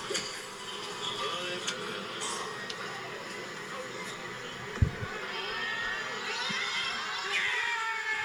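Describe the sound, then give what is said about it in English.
A large outdoor golf crowd roars and cheers in celebration, a sustained wash of shouts and whoops with a few sharp claps or thumps, steady in loudness throughout. “But I'm going to play you the audio from this. The celebration, basically.”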